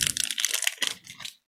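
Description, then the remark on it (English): Loud crunching of hard caramel toffee candy being chewed, a dense run of irregular crackly bites that thin out and stop, with one last small crunch at the end. No one speaks. “I'm going to have to move the mic away so you can't hear me chewing.”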